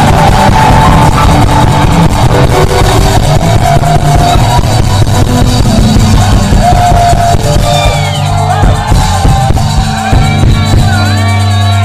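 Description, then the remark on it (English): A church audience shouts and cheers together in a dense, loud roar that keeps up for about twelve seconds, with individual voices rising and wavering over a steady low musical drone. “Can I hear a shout?”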